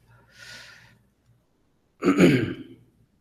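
A soft breathy exhale, then after a brief pause one loud throat clearing with a rough cough-like burst, with no talking.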